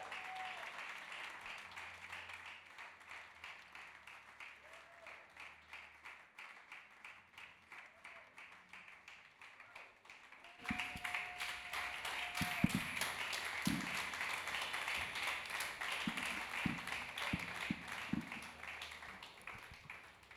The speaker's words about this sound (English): I'd like you to, with a round of applause, welcome